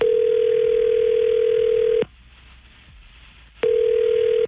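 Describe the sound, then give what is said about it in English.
An outgoing phone call's ringback tone, placed by radio hosts to a woman: a steady, loud electronic hum lasting about two seconds, a short silent pause, then the tone starting again. No voices. “We're gonna call her next with you listening on the phone, and we're gonna see if we can't set that date up.”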